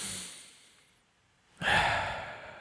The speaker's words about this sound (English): And just take a deep breath.